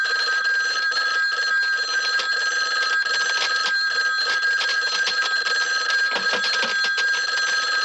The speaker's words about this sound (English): Hello, it's me, the heavy breather from every horror film you've ever seen. You know me, first I terrorize my victim by the telephone.